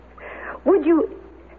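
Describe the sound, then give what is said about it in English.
A small dog with one blue and one brown eye gives two quick, high whining yips, preceded by a soft breathy snuffle, with a faint low hum underneath. “Milady wants to buy the little dog.”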